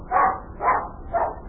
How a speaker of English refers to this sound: If Bunny comes in here barking, he's my dog. Don't be afraid, because he won't bite you. He just likes to bark a lot.